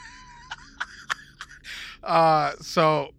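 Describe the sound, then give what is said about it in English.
A person imitates a half-chirp, half-click noise like someone clicking their tongue or calling chickens, with four crisp tongue clicks at an even, unhurried pace, then two short, loud voiced chirps. “So it said almost a half chirp and a half click, like someone was clicking their tongue.”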